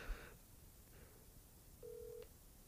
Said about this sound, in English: Okay. It's ringing.